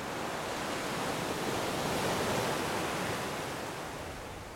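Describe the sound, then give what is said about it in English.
Steady roar of ocean surf breaking on a beach, a broad wash of white noise that swells slightly in the middle and eases off toward the end, with no voices. “Beach wave sounds”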